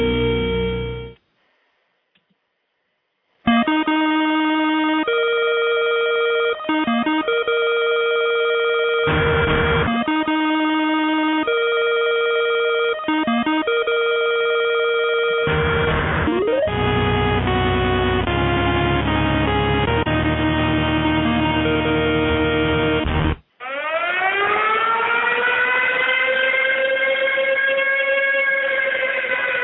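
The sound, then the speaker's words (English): A loud electronic alarm blares in steady, harmonic tones that shift pitch in stages, broken by brief bursts, then turns into a rising, wailing siren sweep near the end. No one speaks. “open up with some gunfire and an alarm, because I want to talk about Michael Bay.”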